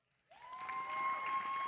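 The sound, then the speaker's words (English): A burst of audience applause on the last Sunday of 2020 rises sharply and keeps going steadily, with a dense crowd clapping and a faint sustained tone underneath. “And we can all give a round of applause because it is the last Sunday of 2020.”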